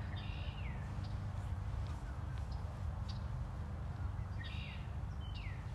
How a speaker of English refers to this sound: Yeah, well, the birds are singing.